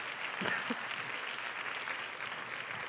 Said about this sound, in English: Somebody clap your hands for a moment.